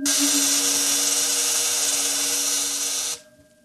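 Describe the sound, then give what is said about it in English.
A vibrating energy field, just activated and vibrating at the cycloid rate set on the crystals, drones with a loud, steady electric buzz, a low hum layered under bright hiss, holding even for about three seconds before cutting off abruptly. “The field is vibrating at the cycloid rate set on the crystals.”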